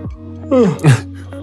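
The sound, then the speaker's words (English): A person yawns, a breathy voiced sound that slides downward in pitch across two swells lasting about half a second, over a steady low hum. “I'm yawning like crazy.”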